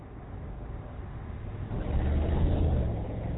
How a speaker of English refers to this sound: Dude just almost hit me with his fucking car. Everybody's so fucking stupid here. I stood there waiting for him to go. He's sitting at the stop sign.